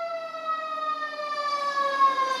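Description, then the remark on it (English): An alarm siren sound effect, played in the background, wails as one continuous, buzzy tone that slowly climbs in pitch, holding steady and fairly loud throughout, with no voices over it. “That's the bullshit alarm.”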